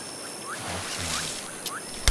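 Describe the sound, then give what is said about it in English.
A boat moving on water in a national park, arriving at a mangrove area, with a steady wash of water noise and a low engine hum, a few short bird chirps, and a sharp knock near the end. No one speaks. “Danilo and his team arrived by boat at an area where approximately 20 mangrove trees have been cut down”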